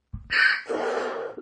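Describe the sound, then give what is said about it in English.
One harsh cough bursts out loudly, trailing into a rough, raspy exhale before cutting off. No talking accompanies it. “I'm so glad I started recording again, ready for you to cough.”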